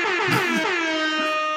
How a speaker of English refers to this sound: And if we seemed a little laughy there, it's because Jeremy downloaded a fucking air horn.